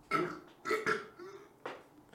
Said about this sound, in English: Sorry, I'm burping.